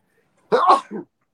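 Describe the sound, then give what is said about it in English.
A single sharp sneeze bursts out loudly, a quick explosive blast followed by a brief, softer trailing breath, with silence on either side and no talking. “Bless you, ….”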